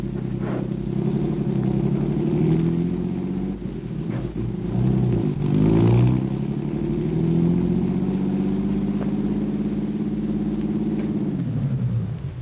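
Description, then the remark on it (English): A car engine hums steadily, its low rumble rising and falling as the car drives along to a rooming house on Garfield, with a brief surge around the middle before settling and fading slightly at the end. “Okay, you stay in the car.”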